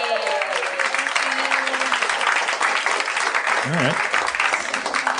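A crowd breaks into steady, sustained applause for an audience member called down to the stage, filling the whole stretch at an even loudness, with a few cheers and whoops rising above the clapping.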